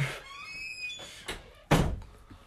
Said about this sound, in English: That's the door.